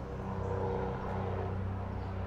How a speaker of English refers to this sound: Yeah, I don't know that my, whoops, you can hear the helicopter.